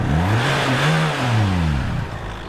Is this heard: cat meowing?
no